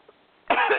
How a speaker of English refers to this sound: I still have a cough, sorry.